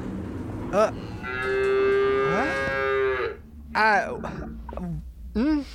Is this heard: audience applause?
no